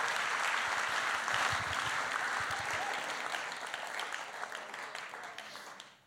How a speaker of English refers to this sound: I love that. Just give these guys a round of applause. We love you guys. Thank you so much. Well done, all of you.